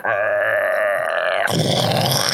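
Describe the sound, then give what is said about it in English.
A voice imitates a tree falling: a long, strained creaking groan that wavers in pitch, then breaks into a loud, noisy rushing crash as the trunk hits the ground. “as the tree finally topples over.”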